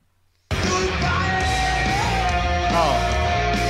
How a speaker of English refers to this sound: I have something that I don't remember what it is here that's labeled Goodbye Shriek.